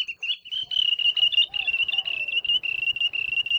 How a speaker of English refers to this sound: the name ulili sounds like their call. In Hawaiian culture, the ulili is one of the sacred messengers and scouts of the gods. Their English name, wandering tattler, refers to their alarm calls to warn other birds when hunters or predators are nearby.